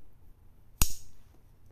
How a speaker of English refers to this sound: Hold on while I light up. Hold up.